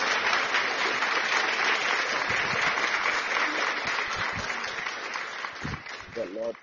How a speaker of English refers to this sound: Hallelujah. Give a clap offering unto the Lord.